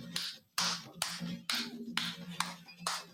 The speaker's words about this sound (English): Here we go. Here we go. Everybody clap.